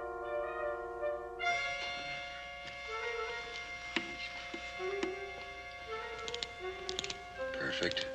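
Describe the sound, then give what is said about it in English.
The tumblers of a safe's lock click into place: a series of sharp, irregular clicks, some in quick clusters, heard over a steady humming tonal drone. “I'll listen for the tumblers.”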